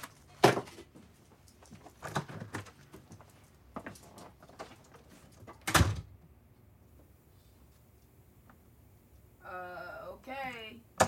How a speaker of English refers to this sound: It's called A Second Coming Out, and it's a symbolic act where the guest goes into the closet and they close the door, then they open the door and come out a second time.